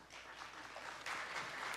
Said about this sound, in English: So I want you to be involved for just a second by clapping. How many of you eat a meal every night with either some friends or family members? Every night you sit down at a formal meal. Will you clap for me?